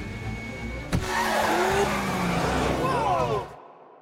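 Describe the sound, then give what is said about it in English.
A loud car chase between police SUVs with big, extra-powerful V8 engines and a little car given Vespa motor sounds: engines roar and rev with rising and falling pitch, tires squeal in sweeping whines, and a sharp thump lands early before the noise cuts off abruptly. “The police SUVs are going to be these big V8s and we make them extra powerful.”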